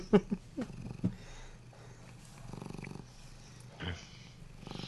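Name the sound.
cat purring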